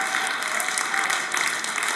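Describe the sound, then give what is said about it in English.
A church audience claps together in a steady, dense wash of applause, many hands at once filling the space evenly and continuously, with no voices rising above it. “Some of you just need to clap your way into victory today.”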